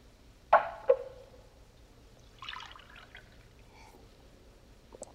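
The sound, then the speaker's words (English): Two bright clinks of glass, then a short splashy burst of water being poured into a drinking glass, followed by a faint trickle and a small tap at the end. Fairly quiet, no talking. “Could I have a glass of water?”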